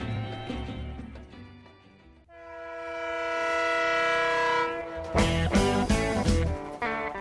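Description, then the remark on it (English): A loud, sustained train horn swells for a few seconds, framed by the low rumble and heavy rhythmic clatter of a rolling train, with no voices. “Yes, choo, choo, choo. Let's get on the Blues Train.”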